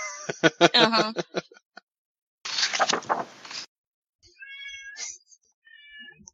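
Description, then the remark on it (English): A cat meows loudly, a few drawn-out calls in quick succession, followed by a harsh noisy burst and then thinner, higher-pitched mews trailing off. “Yes, you're a very good hunter. I'm very proud of you, but you're very loud.”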